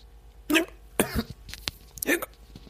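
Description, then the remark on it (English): A person imitates hiccups with their voice: three short, sharp vocal bursts spaced unevenly over a couple of seconds, moderately loud, with faint background noise between them. “Are you saying hiccup?”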